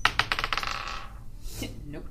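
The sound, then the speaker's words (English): Dice are rolled for an intelligence check, clattering across a hard surface in a quick burst of bright, clicking bounces that speed up and fade out within about a second, followed by faint background murmur. “You can roll me an intelligence check if you'd like.”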